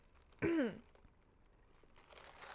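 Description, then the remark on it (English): A quick, loud swirl of ice in a glass, used as a transition sound, lasting about a third of a second with a rattling, ringing, slightly descending tone, then fading to faint rustling. No one speaks. “Obligatory ice swirl. That should just be our transition noise now.”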